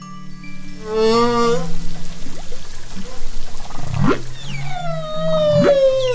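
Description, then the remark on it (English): A humpback whale sings in long, sliding tonal moans and upsweeping whoops, some rich with harmonics, over a low underwater rumble with no talking. “That, in case you didn't know, is a humpback whale singing.”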